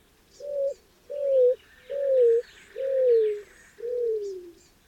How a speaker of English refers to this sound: What a find, and it's not a dove. It's the mournful song of a greater roadrunner, sounding off from a patch of mesquite and creosote bushes.